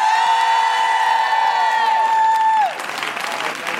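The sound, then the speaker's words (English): An audience bursts into loud, steady applause while a long sustained cheer rings out above the clapping, then the cheer cuts off and the dense applause carries on. “Listen, a big round of applause”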